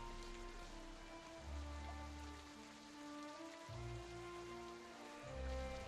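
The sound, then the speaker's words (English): Heavy rain pours down in a steady, continuous hiss, with low droning musical tones swelling beneath it. No one speaks. “And make no mistake, this is pouring rain.”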